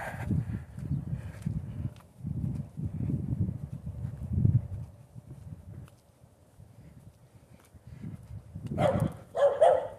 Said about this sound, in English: Dog, whatever number that is. But of course, we're not counting dogs.